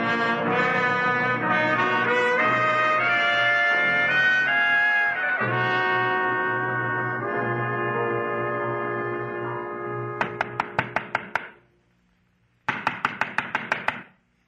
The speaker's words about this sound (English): Come on where? To knock on a door. To get back some junk.